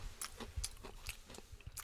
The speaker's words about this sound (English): Finish crunching, bruv. Jeez.